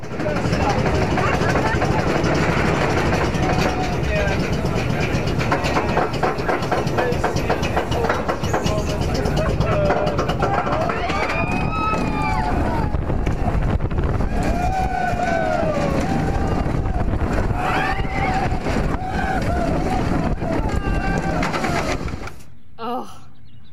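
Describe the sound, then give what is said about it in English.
A roller coaster's chain lift clanks loudly and steadily up the first climb before the big drop, a rapid rhythmic clacking with rumble beneath and voices chattering over it, cutting off near the end. “And then the sound of that first ascent before the big drop.”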